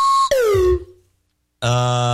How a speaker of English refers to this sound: another vote for the slide whistle, which you haven't been hearing a lot of.